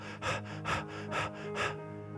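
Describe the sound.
A voice imitates the labored gasping breathing of a dying woman in a hospital bed: four strained, breathy inhalations in a steady rhythm, fairly loud, with a faint sustained tone underneath.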